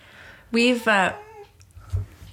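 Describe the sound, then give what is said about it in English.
Bowie the cat lets out a loud meow, a single drawn-out call with a brief break in the middle that trails off, followed by a faint low thump. “That is Bowie the cat meowing from headquarters.”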